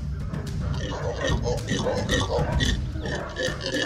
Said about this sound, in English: The howler monkeys weren't just howling for no reason. They were howling because I was under their tree and they didn't like it very much. Like they would throw things down, like fruit and stuff from the top of the tree.